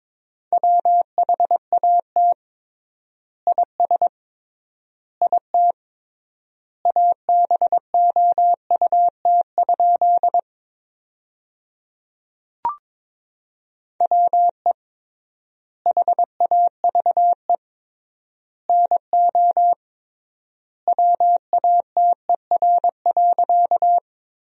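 Morse code sent at about 22 words per minute, sending sentences built from the top 100 words with triple word spacing: a steady mid-pitched beep keyed into quick dots and dashes, grouped into bursts with long pauses between words. There is no talking and no background noise.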